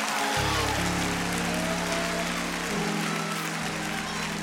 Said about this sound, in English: If you're glad about it, clap your hands and praise God.